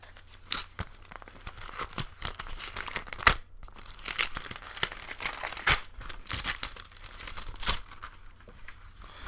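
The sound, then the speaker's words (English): A plastic bag crinkles and rustles steadily for several seconds, with sharp irregular crackles and a few louder crunches as it is handled. No one speaks. “Why was that in a plastic bag?”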